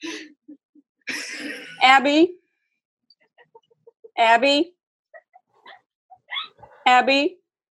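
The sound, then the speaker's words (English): A security dog barks three times, loud, with pauses of a couple of seconds between each sharp, yelping bark and some faint rustling and scuffling in between. “She's with her security dog.”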